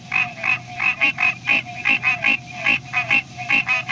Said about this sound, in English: Now, to me, that sounds like a group of birds or something. Well, oh, yeah. That was green tree frogs. It was a soloist, if you will, in the foreground, a soloist green tree frog. But in the background, you could hear the whole chorus.